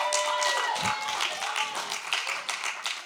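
An audience applauds steadily for a preacher after his preaching, many hands clapping in a dense, continuous patter that holds at an even, fairly loud level throughout, with a faint murmur of voices mixed in.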